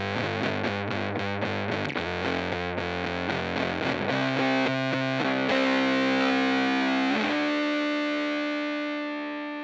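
A heavily distorted electric guitar, played through a distortion sustain pedal with the input knob at about 11 o'clock, plays a fast run of chugging, chopped notes, then lets a thick chord ring out with long, buzzing sustain that slowly fades at the end.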